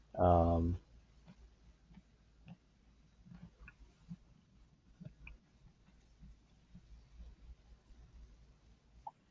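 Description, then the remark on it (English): Paper crinkles and rustles as a man crumples it at home, in a string of scattered, irregular crackles and clicks, after a short loud burst at the very start. “You're fighting with a paper.”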